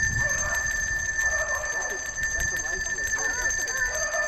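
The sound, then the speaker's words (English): Color-coded handbells ring out in sustained, bright tones that hang steadily over the whole stretch, played out in the cold where people have gathered, with faint voices murmuring underneath and some low rumble in the background. “Those are the same bells that Ann sent us. Same color coordinated.”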